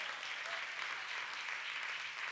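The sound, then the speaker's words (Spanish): An audience applauds Jesus Christ as the King, clapping steadily in a dense, continuous wash of applause, many hands together with no voices rising above it, holding an even level throughout. “Denle un fuerte aplauso al Rey con el corazón.”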